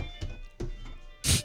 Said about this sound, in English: the ice cream truck is there